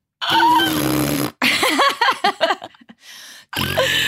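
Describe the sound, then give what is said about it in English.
Someone imitates a fart with their mouth: a long, loud buzzing blast, then a run of wobbly sputtering bursts, a short breathy hiss, and one more buzzy blast. “See, I'm terrible at fart sounds.”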